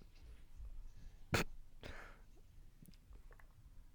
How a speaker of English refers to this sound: Yeah, you know, I didn't know if you were doing blow for a second, or you're like sniffle. Was that a sniffle? That was a sniffle.